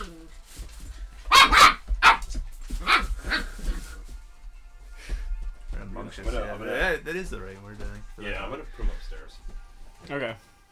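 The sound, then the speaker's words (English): A young female puppy in her first week with a new household lets out a quick cluster of sharp, high-pitched yips and barks near the start, followed by people talking while occasional fainter yelps continue. “She's so young, she's a little pup, so she just wants to play, wants to bite, do her thing.”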